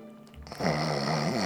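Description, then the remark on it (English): A loud snore from a man still asleep, lying in front of his desk, rises after a quiet moment: a long rumbling inhale with a buzzy, nasal drone that holds steady for about a second. No one speaks. “He is still asleep. I can hear him snoring.”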